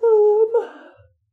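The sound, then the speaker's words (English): One big human yawn, fairly loud: a drawn-out voiced groan that breaks into a breathy, fading exhale, lasting about a second with no talking over it. “Sorry, big yawn.”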